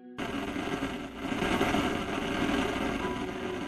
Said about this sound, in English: The comm line is open, but all you hear are some clicks and a low hiss.